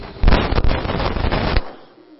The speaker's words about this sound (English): Thunderstorm. As long as we've got the words on the screen, we don't have to have the volume as loud.